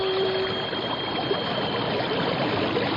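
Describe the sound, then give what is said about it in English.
A steady, loud roar of the rushing, churning water of a powerful whirlpool fills the whole stretch without pause, with no voices present. “what's that noise? It sounds like a giant waterfall. There are no falls around here. It's a whirlpool.”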